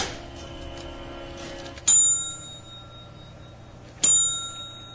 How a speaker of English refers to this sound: Have you ever done this? Just kept ringing a bell.